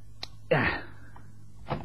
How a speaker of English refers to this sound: That's a neat trick, putting that chair in my way to fall over in the dark.